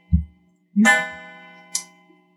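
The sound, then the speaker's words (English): A clock chimes at eight o'clock, ringing out once: a bright harmonic tone that hums and slowly fades, preceded by a soft low knock, with a brief metallic shimmer midway through the decay. No one speaks. “This is not the first time we've had chimes on a recording.”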